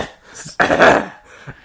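A single harsh, raspy cough bursts out loudly for about half a second, standing alone with only quieter breathy noises before and after it.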